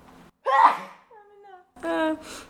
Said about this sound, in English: How am I? How am I sneezing? How am I going?